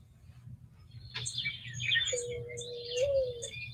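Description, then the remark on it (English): A low, drawn-out cooing hoot, like a mourning dove or owl, rises over a steady background rumble, with bright chirping birdsong scattered around it. No one speaks. “You sure that's a morning dove? Not those. That sounded like an owl to me.”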